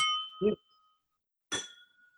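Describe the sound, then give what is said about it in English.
Whisky glasses clink together in a toast, two bright ringing chimes about a second and a half apart, each leaving a short shimmering tail. Clear, with no talking. “I'm just going to raise a wee glass to that myself.”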